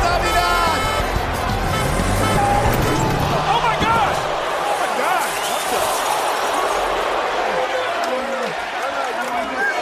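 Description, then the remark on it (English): Alberto Del Rio's fancy car engine rumbles as it drives into a wrestling arena beneath a loud, roaring crowd for the first few seconds, then drops away while the crowd keeps shouting and cheering. “But we also had time that Alberto Del Rio actually ran Santa Claus over with his fancy car.”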